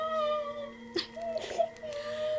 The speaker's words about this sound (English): When they found their victim, they would perch in a spot out of sight and lure people in with the sounds of crying infants.